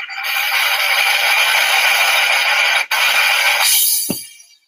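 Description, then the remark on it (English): A steady, loud drum roll rattles on for about three and a half seconds with one brief break, then ends on a single low, punchy hit that fades out. “The drum roll, please.”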